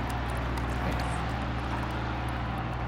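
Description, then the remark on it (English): A snow plow truck passes outside, its engine droning steadily in a deep continuous rumble with a low mechanical hum that stays loud and unchanging throughout, with no voices. “That is the most annoying plow truck I've ever heard.”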